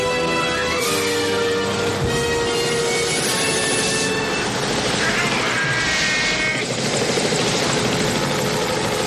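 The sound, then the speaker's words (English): A loud police helicopter with a continuous mechanical roar, where rising, whining boost sweeps surge up twice over the steady engine drone. “I love this boost sound that comes from the police helicopter.”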